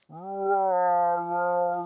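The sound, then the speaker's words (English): A person imitates a whale call with a single long, steady moaning tone held for nearly two seconds, fairly loud, with no other sounds around it. “Now you can listen to the sultry sounds of some whale calls that I will do.”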